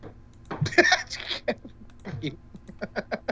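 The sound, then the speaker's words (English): A burst of harsh coughing, followed by a string of shorter, quieter coughs, with a bright tinkling chime, the fairy sound from Zelda, briefly overlapping the first loud cough. “Yeah, it was the fairy from Zelda and also me coughing.”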